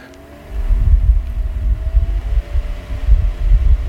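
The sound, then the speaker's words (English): After a brief quiet moment, an electric fan is switched on with a flip of a switch and starts up: a loud, low whooshing roar with a steady motor hum underneath, its airflow buffeting the microphone in uneven gusts. “So of course, if I want to bring a fan in, I could, but if I bring a fan here, I'm actually going to turn it on for you guys just so you can hear it here.”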